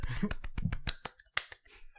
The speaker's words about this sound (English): A little petite clap. I don't want to do like a huge, you know.